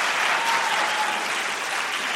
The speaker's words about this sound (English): He's wisely letting the applause die down before he speaks.